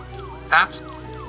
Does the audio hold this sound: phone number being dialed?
no